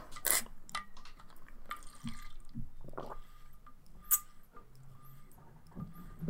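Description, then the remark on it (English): Someone takes a water break, sipping water: soft wet swallows and gulps, with a couple of sharp clinks or taps from the cup, and no talking. “It's going to take a water break again.”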